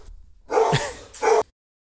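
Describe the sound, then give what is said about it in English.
Excited dogs bark and yip in two sharp, loud bursts, the first longer and the second short, with no talking. “They're excited. Mama's home.”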